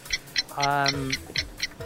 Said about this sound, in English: Can we have the clock, please?